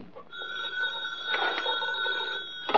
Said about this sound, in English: Now the phone. Quiet, will you? I'm going to answer you.